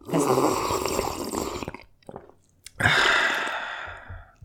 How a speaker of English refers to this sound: I'm like crunching it in my mouth.